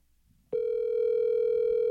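A steady electronic telephone line tone, from a live phone call being placed during a live show, begins abruptly after a brief quiet moment and holds unbroken at an even, fairly loud level, with no voices present.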